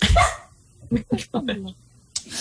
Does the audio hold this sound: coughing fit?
no